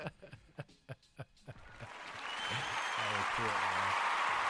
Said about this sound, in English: And let me get them claps, man. Let me get them claps.